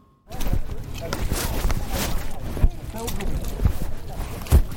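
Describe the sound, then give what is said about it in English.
Strong wind roars and buffets across an open, marshy, muddy field near the site of the Battle of Bosworth, a loud, continuous rushing noise with gusty surges and a few low thumps, starting abruptly after a moment of silence. “So instead, we talked in the less windy and muddy visitor centre.”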